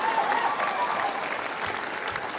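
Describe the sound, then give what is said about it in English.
Steady audience applause from a crowd at Howie Miller's stand-up comedy set at the Native American Comedy Slam, a dense, continuous patter of many hands clapping at a fairly loud level throughout, with no talking over it. “You know, all the Native people clapping, all the white people are just like, oh my God, that would be a bad choice, hey?”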